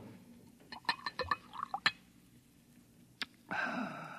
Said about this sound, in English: Pour me a little more of that muggle juice.